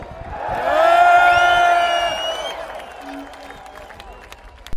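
An audience bursts into loud applause and cheering for a band, with high whoops and shouts rising over dense clapping, peaking early and then tapering off into scattered claps and crowd noise.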